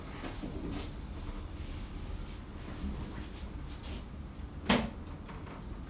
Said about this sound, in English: I am going to just go and shut the kitchen door in case it's coming from the kitchen direction, whilst somebody else then... Oh, Gustavo's going to shut it for me. I have to kind of half slam it, Gustavo.